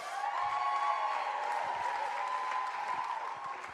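An audience claps steadily for several seconds for the next preacher being invited up, a dense, even wash of many hands with scattered sharper claps, sustained at a fairly constant level throughout.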